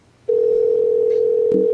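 telephone dial tone

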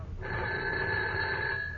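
telephone ringing

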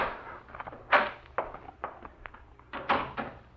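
door knob turning

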